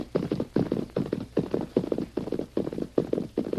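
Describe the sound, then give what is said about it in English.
Steady, rhythmic hoofbeats of a horse being ridden ahead at a brisk pace, clip-clopping moderately loud, with regular clusters of impacts repeating about twice per second and no voices. “Now, you ride ahead and ask if we can water our horses.”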